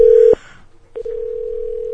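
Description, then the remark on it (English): A steady, loud telephone dial tone sounds while a phone call is being placed, cuts off briefly with a click, then resumes as an unbroken hum. No one speaks. “We're making a call here. Call that person or whatever.”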